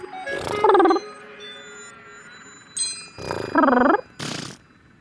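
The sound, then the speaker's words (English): Elephant seal calls in two loud bursts of breathy, warbling roars with short snorting blasts around them, and a single bright metallic ding rings out between the bursts. “signing off like an elephant seal.”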